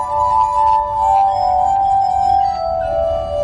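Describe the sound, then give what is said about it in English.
Spinning glass bowls of a glass harmonica, turned on a metal rod by a large foot-driven spinning wheel and played with wet fingers, sing out in steady, sustained ringing tones, with faint clinks and a low mechanical rumble beneath, fairly loud, with no voices. “Now, to make the glasses move, there's a large spinning wheel attached to the end of this one rod, this metal rod.”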